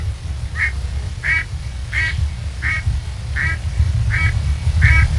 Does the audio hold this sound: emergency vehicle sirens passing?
no